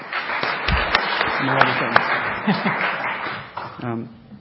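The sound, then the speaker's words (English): An audience at a live panel event in New York applauds in a steady, dense wash of clapping with a few sharper claps, while scattered voices and light laughter mix in underneath before the applause thins slightly at the end. “So I'll ask you to hold your applause till the end.”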